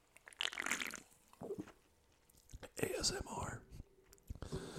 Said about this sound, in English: I'm going to take a little sip of this ice cold grapefruit Kirkland Signature sparkling water.